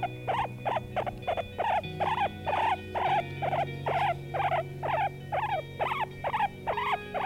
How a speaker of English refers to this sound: A lot of pets around the world with this guy. Guinea pig.